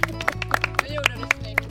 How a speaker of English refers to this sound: His grandfather leads us in a round of applause.